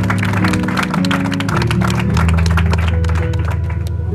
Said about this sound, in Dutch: Halleluja. I want you to clap for Jesus. Ik wil jullie klappen voor Jezus.